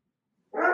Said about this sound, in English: And my dog agrees with me. He's a big fan of Lord of the Rings.